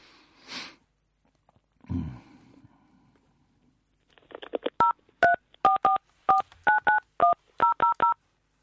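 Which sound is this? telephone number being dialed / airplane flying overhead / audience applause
telephone number being dialed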